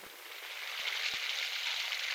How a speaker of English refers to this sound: So Penny and her mother, Grace, are doing the dishes.